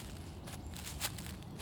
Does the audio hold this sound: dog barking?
no